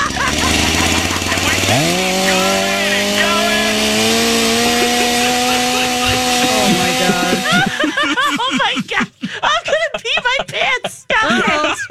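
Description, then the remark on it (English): A chainsaw roars to life and runs at a loud, steady whine for several seconds, its pitch creeping up slightly, before voices start talking over the tail end. “The way it works is the doctor brings in a chainsaw and just starts cutting your belly.”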